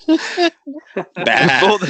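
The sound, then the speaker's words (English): A man's voice mimics a sheep, giving a couple of short nasal bleats followed by a longer, wavering "baa", with brief pauses between the calls. “With all the sheep.”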